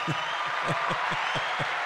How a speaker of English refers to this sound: Hey, hit me with that applause button, baby. Oh, yeah.